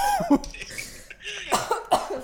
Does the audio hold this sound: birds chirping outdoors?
no